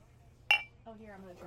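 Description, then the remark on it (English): A single bright glass clink rings out sharply as bourbon is poured into glasses, briefly ringing before fading, followed by a person starting to talk over faint low background hum. “So everyone give me a glass if you're going to try it.”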